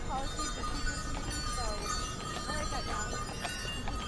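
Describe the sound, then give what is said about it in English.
A horse-drawn carriage of Willow Wind Carriage Service, with lights on it, passes with steady hoof clip-clops and a shimmering jingle of bells on the horse, set against a busy outdoor hum with people's voices murmuring. “Here come the jingle bells again on the horse.”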